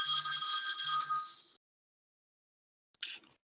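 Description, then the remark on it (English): A telephone rings with an incoming work call, a bright, warbling electronic trill lasting about a second and a half, then stops; after a pause, a short clatter or click follows. No one speaks. “Nah, it's a work call.”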